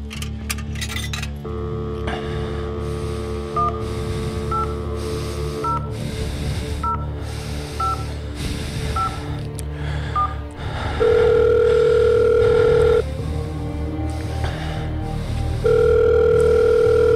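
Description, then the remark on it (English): A phone call being dialed to the American Idol voting hotline: a quick run of evenly spaced touch-tone beeps over a steady line hum, then loud sustained signal tones that pause and return, clear. “You know the drill. One phone call. Make it a wise one.”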